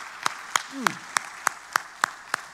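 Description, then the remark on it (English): An audience claps hands in praise to God, sharp unison claps in a steady, brisk rhythm, about eight in a row, with a brief voice call rising over the clapping early on. “Let's give Him a hand clap of praise.”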